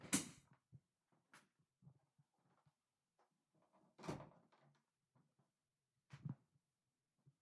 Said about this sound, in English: Can you close that door real quick? Yeah.